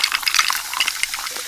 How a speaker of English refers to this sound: I'm pouring it over some ice. Hear all those deliciously fizzy Pepsi bubbles? Those, my friends, are not ordinary bubbles. Those are zero sugar bubbles, because Pepsi Zero Sugar has zero sugar.